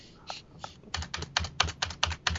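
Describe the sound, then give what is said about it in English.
Rapid, forceful tapping on a computer keyboard: a couple of isolated clicks, then a quick run of sharp keystrokes in an uneven rhythm, moderately loud, with no voices. “You hear the tapping on that keyboard? On that sounds like angry tapping.”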